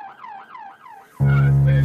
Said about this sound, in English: You do see the cops coming? I hear some sirens now. You hear the sirens? I don't see anybody yet, but I hear some sirens.